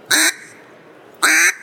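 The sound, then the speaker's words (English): Two relaxed, nasal mallard hen quacks, each short, separated by about a second of quiet background hiss. “and then your single quack”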